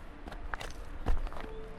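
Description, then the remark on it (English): Footsteps crunching over a dirt trail, leaving a lake, a handful of soft, gritty steps at an unhurried walking pace, with one heavier thud near the middle and no voices. “The dirt crunches beneath your feet as you leave.”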